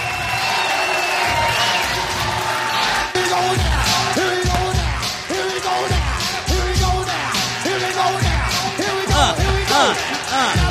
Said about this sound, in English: Still, like a lot, like you can mostly just hear the crowd.